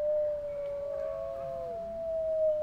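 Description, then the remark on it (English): Several wolves howl together, one long steady note held throughout while fainter voices rise and slide at other pitches around it, a sustained layered chorus with no talking. “They live in family groups of up to 12 animals, howling together, and it establishes cohesion.”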